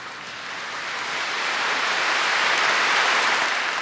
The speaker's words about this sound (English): I think it's really interesting that the applause starts out kind of faint, but then people kind of testing the water. She's the first person to speak, and this has just gotten very political. And then the applause really grew.